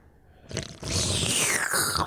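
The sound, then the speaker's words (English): A loud slurping sip of coconut water with gritty pieces in it: after a brief quiet moment, a wet, airy sucking noise starts and keeps going for over a second, with no one speaking. “Make sure we can hear the sip on the podcast.”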